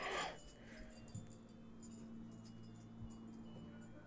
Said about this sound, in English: My dog is on crack. She literally jumped off the bed. You guys can hear her. She jumped off the bed and she's like trying to go under the bed.